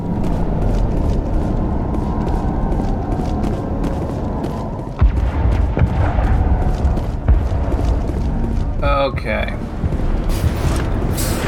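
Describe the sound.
A steady rumbling video game soundscape set in a colony, with muffled booms and sharp cracks of gunfire scattered throughout, loud and continuous, while a voice speaks briefly over it.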